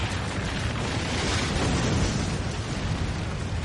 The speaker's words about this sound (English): Yellowstone National Park, Wyoming. The most powerful volcanic event ever witnessed by mankind has just rocked the Earth. A massive shockwave, equivalent to a magnitude 11 earthquake, now radiates out in all directions.